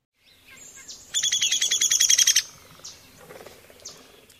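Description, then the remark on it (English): A downy woodpecker gives its whinny call, a rapid, excited string of high, slightly hoarse notes that drops in pitch toward the end, heard clearly with quiet outdoor ambience. “It is somewhat excited string of hoarse, high-pitched notes that descend in pitch toward the end.”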